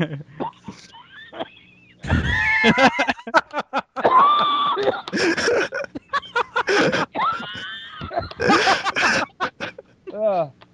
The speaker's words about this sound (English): they're fucking coughing to death.